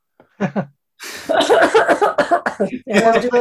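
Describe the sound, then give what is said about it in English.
A short, deliberate-sounding cough, one or two quick bursts, followed immediately by a person talking. “you might want to do a tactical cough at this point, because this isn't an easy one.”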